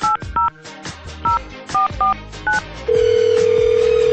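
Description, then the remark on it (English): A telephone call being placed: seven quick touch-tone keypad beeps in an uneven rhythm, followed by a steady, loud ringing tone on the line, with no voices. “I'm going to get him on the phone right now, though.”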